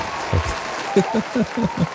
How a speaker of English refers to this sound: So congratulations, bro, on getting this far. Applause, fireworks.